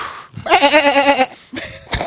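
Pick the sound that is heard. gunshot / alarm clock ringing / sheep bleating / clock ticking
sheep bleating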